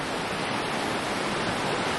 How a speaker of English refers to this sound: So listening to this river, that's when I say something, question the wisdom of a concept of teaching kids to be sound designers.